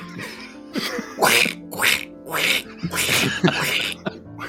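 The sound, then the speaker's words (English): A person imitates the cartoon duck voice of Donald Duck, letting out a string of about five raspy, sputtering quacks in quick succession, fairly loud, with no other talking. “I just hear Donald Duck. When you do that.”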